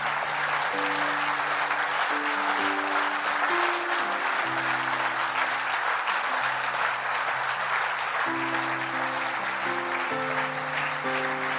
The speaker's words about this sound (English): Hey guys, I want you to welcome these people, so give them a round of applause. They did a big thing.